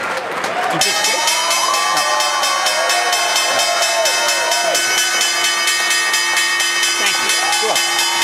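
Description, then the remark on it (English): A stock exchange opening bell, as aired on CNBC, starts just under a second in and rings continuously, a bright, shrill metallic clangor that holds steady to the end, with crowd cheering and chatter underneath. “Let's get the opening bell here in the CNBC Real-Time Exchange.”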